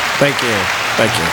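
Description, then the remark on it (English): A crowd applause sound effect: a steady, dense wash of clapping, while a single voice calls out twice over the noise. “But we still got the crowd showing up every week.”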